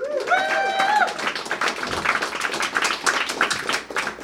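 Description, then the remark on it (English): A crowd applauds with dense, steady clapping that lasts the whole stretch, and a high whistle or whooping cheer rises over it at the start, as the audience votes by applause for the first contestant, whose entry is Andy Griffith. “So, pick a favorite, vote with your applause, starting with Rick Wood, Andy Griffith.”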